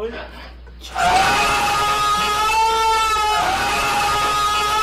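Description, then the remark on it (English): After a brief quieter moment, a loud scream sound effect bursts in and holds for several seconds, its harsh pitch wavering and trembling without a break. “Okay, I need to find a better screaming sound effect.”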